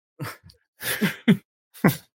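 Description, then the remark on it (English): A fairly loud sneeze, with a few short breathy catches leading into a sharp burst and a second quick burst after. No one is speaking. “That was a sneeze.”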